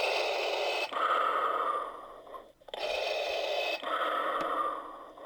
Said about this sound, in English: And if I push the button, what noise will it make now? That's a normal breathing noise. Healthy lungs.